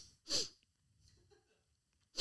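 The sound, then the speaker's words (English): A single loud, sharp sneeze bursts out near the start, followed by quiet shuffling, then another abrupt burst of breath at the very end. “I was really distracted for about by your sneeze.”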